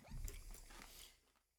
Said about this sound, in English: Oh, I heard a crunch. Oh, there's chips. There's chips. I heard a crunch. Don't chew right next to the mic.